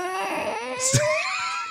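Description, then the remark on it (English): A faulty sliding door squeaks open in one long, wavering squeal that slowly climbs in pitch, with a brief bump partway through, and no talking over it. “Let me slide open this door.”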